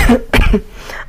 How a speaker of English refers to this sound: Hold on, I'm sorry. She's coughing again, folks.